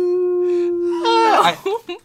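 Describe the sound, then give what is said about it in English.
A voice imitates a howl: a long, steady low note that swells into a louder, wavering rise and fall, then trails off in two short vocal yelps. “You know what they call me in bed? The howling. Because when I'm in the vagina, I'm like, oh, woo.”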